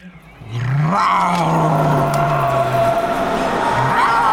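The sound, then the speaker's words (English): A loud tiger roar swells up, holds a long rumbling growl for a couple of seconds, then rises again at the end, heard alone without any talking. “What was that? Sounded like a cat or something.”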